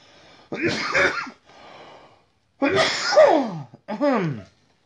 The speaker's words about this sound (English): We can try. Because I don't want to keep putting cough breaks in, man. Because it's a lot of editing.